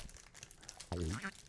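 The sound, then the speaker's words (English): Soft, crackly crinkling of a cracker wrapper as someone handles and eats crackers for ASMR, going on for about a second before a short voiced sound cuts in over it. “Yeah, you eat crackers in ASMR, and I'll drink water in ASMR.”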